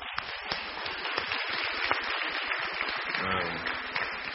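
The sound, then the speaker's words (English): A crowd in a gym applauds the band steadily for several seconds, a dense crackle of many hands clapping at a constant loudness, with a brief voice or cheer rising through it near the end. “And let's give a round of applause for the band.”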